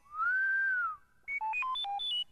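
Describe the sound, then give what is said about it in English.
Bright, bell-like electronic tones: first a single sustained note that swells and bends in pitch, then a quick run of notes hopping between low and high pitches, with no voices. “That, my silly friend, is the sound of bells.”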